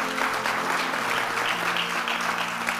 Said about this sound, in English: Let's clap for him.